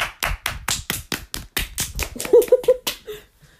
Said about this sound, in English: Round of applause.